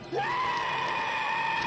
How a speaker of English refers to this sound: What the fuck was that? We waited, listening for more, but there was only the single scream. A goat? Could it have been the goat we saw? Maybe a bear got it.